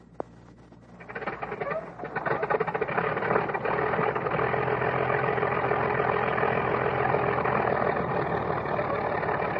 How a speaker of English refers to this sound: And you can hear the primer. Hear it squeaking? The mechanic spins the prop. One of the engines warms up. Hear it squeak? She dies.